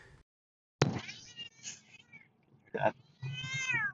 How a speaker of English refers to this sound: Cats are not happy after all. They started complaining as soon as I started to move forward.